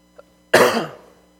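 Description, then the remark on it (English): One sharp cough from a lingering cough bursts out loudly during a sermon and trails off within half a second, preceded by a faint breath, with no talking around it. “I've still got a bit of a lingering cough, so forgive me if I have to stop and go full Marco Rubio on this glass of water several times throughout the sermon.”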